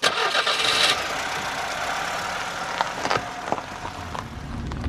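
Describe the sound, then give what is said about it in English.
A car engine, in a car converted into a mobile aquarium for transporting fish, cranks and catches with a loud burst in the first second, then settles into a steady, rumbling idle punctuated by a few brief clunks. No one speaks. “he converted his car into a sort of mobile aquarium for transporting his fish around the country.”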